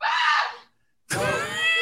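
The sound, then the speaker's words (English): A cat in a video being played screeches twice, loud: a shrill, wavering yowl, a brief silence, then a harsher, sustained screech. No one speaks. “Yeah, the cat's going to attack him.”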